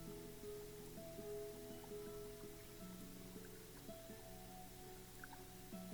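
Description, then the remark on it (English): Spring water splashes steadily out of rock into a shallow collecting pool beside a trail, a soft continuous trickle with no pauses, heard quietly alongside a low sustained tonal hum and no voices. “The trail passes by a spring, splashing out of the rock into a shallow collecting pool.”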